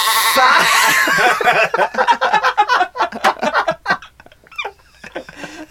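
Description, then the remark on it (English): A loud, quavering goat-like bleat, probably a person imitating one, rings out for about a second and a half, then gives way to lively talking and a bit of laughter. “Was that a goat?”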